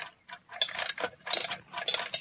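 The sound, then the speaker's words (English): An old alarm clock is wound in several quick bursts of dry, metallic ratcheting clicks, then set down with a light clink on a lead table in the center of a magnetic field. No one speaks. “Now, wind up that alarm clock and put it here on this lead table in the center of the magnetic field.”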